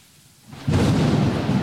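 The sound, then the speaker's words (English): After a brief hush, a loud crack of thunder in a sound effect bursts in and rolls into a heavy, sustained rumble mixed with the dense hiss of pouring rain, full, with no voices. “Oh, wait, you have to pause so I can do sound effects.”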